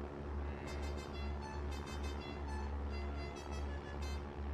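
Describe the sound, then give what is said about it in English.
A food truck in Austin swoops past, its engine rumbling low and steady, the droning hum holding an even loudness throughout with no voices. “Maybe if I throw one of my Tony Lamas boots at the truck on its next pass, when it swoops, I just might disable the engine.”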